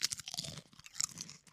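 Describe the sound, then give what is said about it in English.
Crisp crunching of salted rice cakes being bitten and chewed, a dense burst of brittle cracks lasting over a second with no talking. “Wow, listen to that crunch.”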